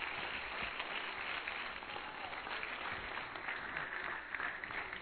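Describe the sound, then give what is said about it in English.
An audience claps hands to thank the Lord, in steady, dense applause, a continuous wash of many overlapping claps at an even level for several seconds with no voices standing out. “Let's clap our hands and let's thank the Lord for that.”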